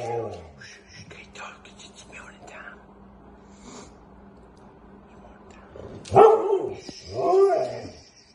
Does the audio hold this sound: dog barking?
yes